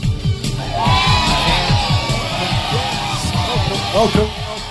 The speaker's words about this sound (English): What an applause